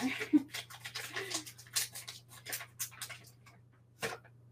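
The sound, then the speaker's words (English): About two teaspoons of unmeasured baking powder are poured into a bowl in soft, grainy rustles and brief scrapes over a low steady hum, ending with a sharper tap. “Pour like 2 teaspoons-ish.”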